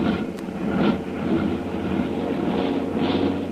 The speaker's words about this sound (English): Oh? Hey, you hear that? Those motors are cold. One of the motors there is starting to miss. You know, that plane is loaded too heavily to climb very fast.